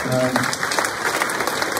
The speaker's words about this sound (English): Go for it if you want to give it a clap.